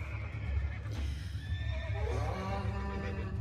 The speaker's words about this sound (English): They're screaming. The horses are screaming.